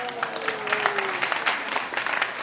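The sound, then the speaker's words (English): An audience applauds steadily after a contestant's correct guess of the film Silver Linings Playbook, a dense patter of many hands clapping at a fairly even level throughout, with a faint whistle-like tone gliding down early on. “I can tell the crowd was really rooting for you on that one.”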